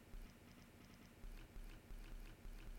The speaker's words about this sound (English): All right, second segment sip complete.